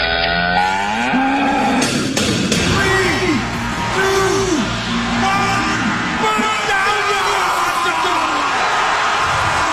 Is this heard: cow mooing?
yes